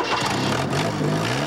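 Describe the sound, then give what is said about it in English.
The engine of an orange 1977 Chevette cranks and catches, then runs with a steady, rising hum for about a second and a half, loud, with no voices. “And if you think that's bizarre, wait till you see what they can do with the 77 Chevette.”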